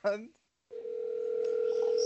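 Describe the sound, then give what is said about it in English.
A brief voice, a moment of silence, then a steady electronic phone tone hums continuously as a call to a friend rings out, waiting for him to answer, growing slightly louder toward the end. “Let's pray he does not pick up.”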